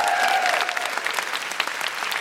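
An audience breaks into steady, dense applause, a thick wash of many hands clapping at a fairly even loudness, with a brief whistle-like tone riding over the start.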